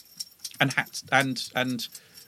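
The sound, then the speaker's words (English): A dog scratching itself, its collar tags rattling in quick, irregular metallic jingles for a couple of seconds, with a voice talking over the bright jangle. “That rattling noise is my dog having a scratch.”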